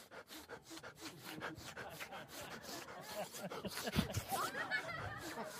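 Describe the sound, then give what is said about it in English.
A person imitates a drug-sniffing dog at an airport sniffing around, making quick, breathy, rhythmic snuffling bursts that repeat steadily for several seconds at a fairly loud level, with no words spoken. “I'm sniffing everything.”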